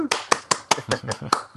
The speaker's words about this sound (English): Person applauds.